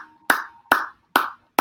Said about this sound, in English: Whoever is clapping